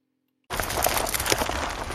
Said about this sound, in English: Sound of tiny pieces of gravel crunching and popping against one another underneath the sport-styled wheels of the new Ford Focus ST, stimulating your senses into a spine-tinglingly relaxed state? No?